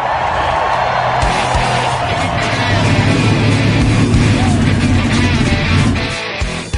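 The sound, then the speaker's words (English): Several race car engines roar to life together and rev loudly, a dense, sustained rumble with rising pitch that fills the whole stretch before easing off at the end. “Motors! Start your engines!”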